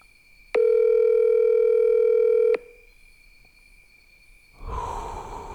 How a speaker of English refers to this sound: Assuming he doesn't miraculously answer this call. This never-ending call.